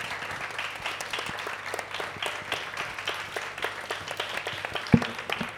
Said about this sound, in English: But for the time being, can we please have a round of applause for our panel?